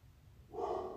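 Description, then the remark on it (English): Dogs bark, a loud, rough burst breaking in about halfway through after a quiet, low rumble, and carrying on to the end with no one speaking. “Oh my gosh, my dogs.”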